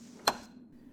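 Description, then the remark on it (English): A single sharp knock on a door, a brief wooden rap that stands alone over a quiet, steady low hum, with no voices. “Wait, there's someone at the door.”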